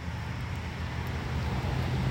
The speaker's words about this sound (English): That's a traffic here tonight.